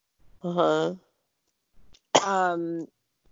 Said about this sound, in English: Oh, a dry cough.